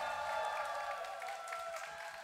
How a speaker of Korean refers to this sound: 박수 부탁드립니다, 여러분.